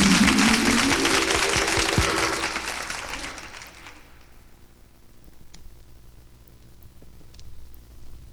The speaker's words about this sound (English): Let's give the Lord a hearty applause.